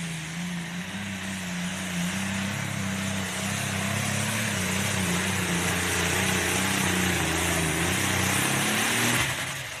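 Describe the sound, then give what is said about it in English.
A pulling tractor's heavy engine roars continuously during a run at a mound in Macon, Missouri, in September, its deep droning tone holding steady and rising slightly before cutting off abruptly near the end. “This was Macon, Missouri in September, the N2 Deep tractor at a mound.”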